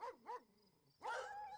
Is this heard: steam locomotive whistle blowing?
no